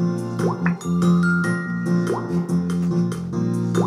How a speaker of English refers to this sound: anyway, so I plug in my phone, and I start playing some appropriate MIDIs.